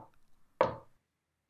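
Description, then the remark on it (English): Two loud, sharp knocks on a door, about a second apart, each a hollow wooden thud that stops quickly. A faint rumble comes before them, and no one speaks. “There was a third knock, and then silence.”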